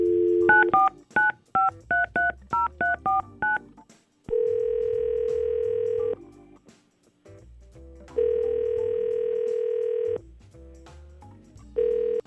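A phone call is placed on the Y100 radio show: a quick run of about ten touch-tone dialing beeps, followed by long, steady telephone tones that repeat with short pauses between them. Clear, with no talking.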